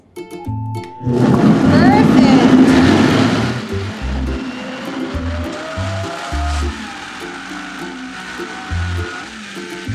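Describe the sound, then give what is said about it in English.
A blender on its smoothie setting, started with a push button, kicks on abruptly with a loud roaring whir, then settles into a steadier grinding hum with a slowly rising motor whine, while low voices murmur underneath. “It is on, and we're going to just put it on, I think it's on the smoothie setting, and then you just push this button down here.”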